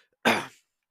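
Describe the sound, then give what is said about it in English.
A single short, harsh throat clearing, fairly loud, a rough burst of about a third of a second followed by silence, from a speaker with a slight sore throat. “By the way, if I am clearing my throat and, like, sounding awful throughout this entire thing, I apologize.”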